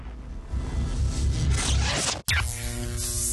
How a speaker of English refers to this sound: We lost some audio here, about 30 seconds of audio. I apologize for that.